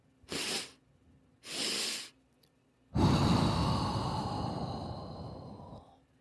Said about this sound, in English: All it is two inhales, and the first inhale is typically a little bit longer than the second, and that's followed by a longer exhale. And I'll run through it here so you can hear what that sounds like.